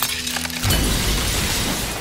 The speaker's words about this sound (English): Okay, so let's go back here a little bit. Let's go back to the shattered glass part.